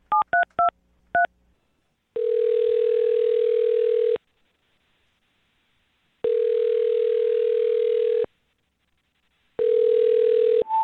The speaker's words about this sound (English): Wait, did you guys dial the right number? I dialed the number that you gave me.